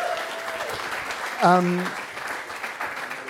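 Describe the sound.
An audience claps steadily for a volunteer from the audience who will act as scribe, in a dense, crackling wash of applause, with a brief high voiced whoop rising over it partway through before the clapping carries on.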